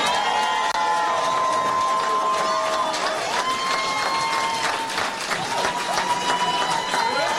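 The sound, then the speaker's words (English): A large rally crowd in Atlanta cheers and applauds a line from the president's speech, with dense, steady clapping under rising and falling whoops and shouts that carry on loudly throughout. “Crowd love that line.”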